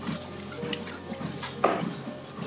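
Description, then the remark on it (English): Someone takes a drink of water: quiet liquid sloshing and a brief louder gulp or splash partway through, with no talking. “Let's take some water here.”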